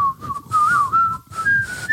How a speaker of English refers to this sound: I'll work on my whistling. Sucks today.